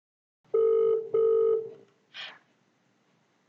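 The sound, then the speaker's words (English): Two loud, steady electronic ring tones sound back to back, like a phone line ringing, as a phone call is placed to reach someone, followed by a brief soft noise burst and near silence. No one speaks. “So we're just going to try and bring him up on the phone now.”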